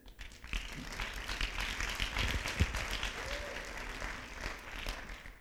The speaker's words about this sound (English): Keyboard player in here, he steps in. Give him a hand clap.